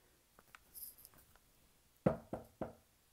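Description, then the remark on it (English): A butler knocks three firm times on a door in quick succession, fairly loud, preceded by a few faint clicks and rustles in otherwise quiet surroundings. “There was a knock, and the butler came in with a silver tray bearing a coffee pot and a cup.”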